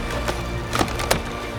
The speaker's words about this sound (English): And now the Godzilla snake slammed its bulk against the Bifrost. Cracks skittered across Rainbow Bridge.